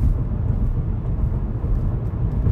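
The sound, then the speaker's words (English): Steady, loud low rumble of a car driving fast and recklessly at about 100 in storming rain, with a constant roar of road and engine noise and no talking, sounding like it was recorded from inside the vehicle. “So we just driving fucking reckless today, yo.”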